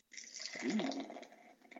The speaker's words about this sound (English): Oh, yeah. It's a beautiful, like, jet black beer. Yeah, it looks like a can of coffee you're pouring in there almost.